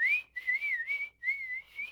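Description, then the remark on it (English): A person whistles a short series of high, wavering chirps, three quick bursts in a row, imitating the cricket-like whistling call of a small frog. The whistle is clear, with no talking. “Smaller frogs, I think, are more like crickets, and they're just like... They're like a more of a whistle kind of thing, like a...”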